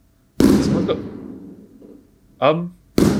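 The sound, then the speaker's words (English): Fireworks set off by a neighbour go off outside: a loud, sharp bang with a long rumbling echo that fades, a brief voice, then another sudden bang right at the end. “Are there fireworks going off?”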